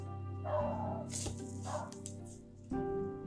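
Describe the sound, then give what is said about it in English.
A dog barks in a few short, separate bursts over a steady low background hum, with no talking. “My dog. I'm going to kill it.”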